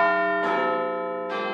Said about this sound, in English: What's that I hear? It's the chimes of Big Ben, which means only one thing around here. It means it is tea time.